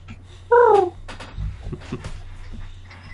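An owl in the distance gives a single short, tonal call that slides slightly downward in pitch, loud and clear, followed by faint low rustling and soft bumps.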